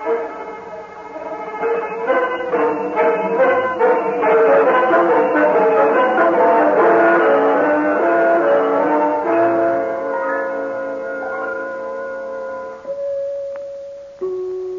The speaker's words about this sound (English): Did you not hear those beautiful chimes? That is enough pushing on the bell,